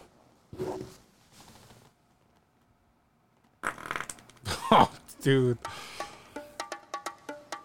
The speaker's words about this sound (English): I got to fart. Yeah. Let it rip.